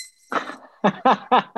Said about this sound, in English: The bell comes in mid-sentence, midpoint, it doesn't matter, you cut off. And you just have to stop.